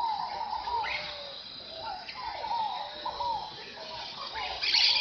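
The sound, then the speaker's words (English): A dense dawn chorus of tropical birds at sunrise by the Rio das Mortes in Mato Grosso, Brazil, including toucans, flycatchers, parakeets, antbirds, pygmy tyrants and macaws, many overlapping chirps, whistles and calls at once, over a steady high insect drone, with no one speaking. “At sunrise, the River of the Dead comes alive with the sound of birds.”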